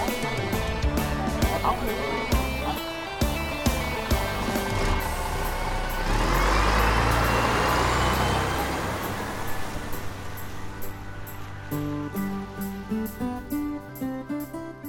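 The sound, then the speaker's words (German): A bus engine rumbles and swells loudly midway as the vehicle pulls up, a deep broad roar that fades back under steady tonal background sounds. “der Bus ist da, bitte alle einsteigen, die Segelfahrt beginnt.”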